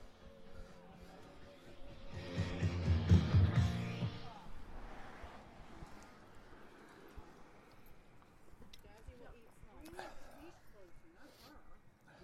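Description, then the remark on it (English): Dogs erupt into a loud burst of barking and snarling for a couple of seconds, followed by scuffling and occasional yips as voices murmur in the background. “Jazz is about to kill Tom's dog.”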